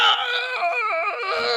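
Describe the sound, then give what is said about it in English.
A voice imitates a burning troll screaming during a tabletop role-playing game: a loud, high-pitched wail with a wavering, warbling pitch, sustained for about a second and a half with no other sounds. “Troll just burns up. Yeah. He's just like screaming.”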